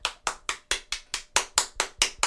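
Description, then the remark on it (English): Steady hand clapping, about ten crisp claps in a quick, even rhythm, fairly close and moderately loud with no voices over them. “Yay, clap, sell it to the kids.”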